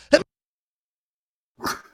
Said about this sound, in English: Oh, my God, I'm going to sneeze.